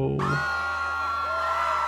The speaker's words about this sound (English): Pay no attention to the screams in the background. It's perfectly normal.